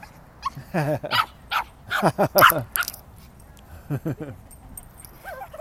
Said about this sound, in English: Well, it's a fun puppy. Oh, it's an excited puppy. Oh, he wants to play. He wants to play.